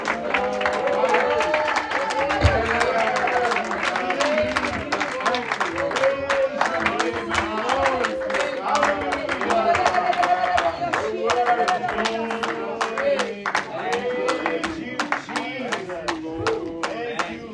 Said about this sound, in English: stand and give the Lord some praise. Give him a hand clap. Amen.